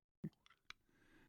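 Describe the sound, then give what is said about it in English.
Faint clicking of hard candy against teeth, two or three small sharp taps with soft mouth and breathy sounds around them, no talking. “Just clicking on your candy over there.”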